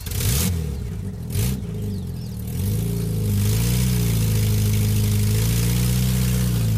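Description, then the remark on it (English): A car engine rumbles, briefly revving twice, then settles into a steady, rising drone as the vehicle pulls away and keeps driving, with no voices present. “He wraps her in a blanket, puts her in a car, and drives away.”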